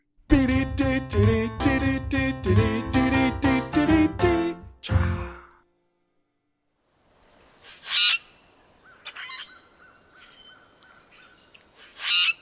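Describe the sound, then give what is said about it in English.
A short burst of bright, rhythmic music ends, then after a pause grackles squawk outdoors, with harsh, scratchy calls and a thin whistling note between two louder bursts. “But so grackles, you know these grackles? Do you know about these things? Like really annoying birds?”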